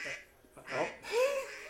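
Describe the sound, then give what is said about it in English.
A duck quacks twice in quick succession, a pair of raspy, nasal calls at moderate volume, with a short gap between them and a faint rustle before the first. “There's the duck.”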